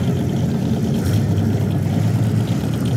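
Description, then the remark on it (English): A race car engine idles with a steady, loud low rumble, continuous, with no voices; the number 99 car being started up in pole position at the start of a race. “Derek is in pole position, starting up the number 99 Mohawk Market car.”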